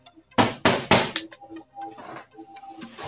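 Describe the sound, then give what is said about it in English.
Three sharp, hollow knocks on a cardboard box in quick, even succession, followed by softer rustling and small clattering sounds. “She's knocking on the box.”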